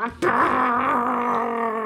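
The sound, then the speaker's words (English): A person's voice imitates a semi truck's jake brake, a sustained buzzy, rumbling drone that starts abruptly and holds steady for almost two seconds. “The Jake Brady. That's a pretty good impersonation. The trucks. They do sound just like that.”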